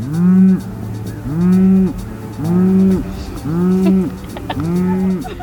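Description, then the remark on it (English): Cows moo repeatedly in a steady rhythm, five long, loud lowing calls following one another closely as they provoke each other, with faint birds cooing in the background, in the agricultural town of Cullman, Alabama. “They were provoking each other.”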